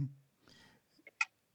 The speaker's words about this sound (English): Hang on a second. I have to say, I've got a little bit of the COVID cough left.